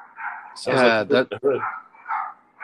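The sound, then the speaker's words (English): A dog named Rex lets out a quick run of three or four loud barks, with quieter voices murmuring before and after. “It is Rex barking.”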